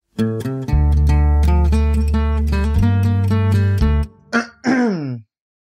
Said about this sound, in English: I'm sorry that whoever's editing this has to cut around all of my coughs.